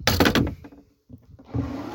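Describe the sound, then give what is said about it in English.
A quick clatter of the wooden doors of a 10-metre narrowboat swinging shut and latching as someone steps aboard and closes them behind, a few knocks and scrapes, then a brief hush before a soft rustling shuffle starts up. “And close the doors after ourselves”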